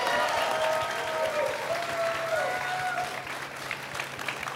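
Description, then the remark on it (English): An audience at an on-stage event claps steadily for several seconds, a dense, even patter of many hands, with a few whoops and whistles rising over it near the start before the clapping continues on its own. “Applause again, please.”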